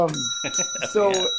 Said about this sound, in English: Should we have a jingle for this segment? For the... It's like the bell above the door.